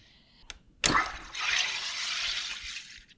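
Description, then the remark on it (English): A SodaStream carbonating a traditional 1 liter SodaStream bottle holding a cool mixture of coffee and water: a small click, then a sharp burst that settles into a steady, fizzy rush of gas lasting about two seconds before cutting off. Fairly loud, no talking. “So I've got a bottle of SodaStream. It's a SodaStream, a traditional 1 liter SodaStream bottle. It has a mixture of coffee and water in it.”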